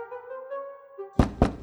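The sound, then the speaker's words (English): Three loud, sharp knocks on the front door of an estate in the morning, in quick succession, following a stretch of soft sustained tones in the background. “She just goes up and then walks up to the door and just knocks loudly on the front door.”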